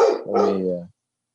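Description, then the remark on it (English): A single drawn-out bark from a big dog hunting for raccoons, loud, opening with a sharp yelp and sliding into a lower, harmonic howl-like tail that cuts off after under a second. “I mean, you and I have definitely cultivated a friendship as my dog is hunting for raccoons.”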